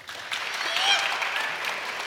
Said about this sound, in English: Think the award goes to Spider-Man. Congratulations, Spider-Man. I like people clapping for pizza rather than clapping for disappointment.